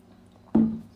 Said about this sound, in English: So I'm just going to have a little drink.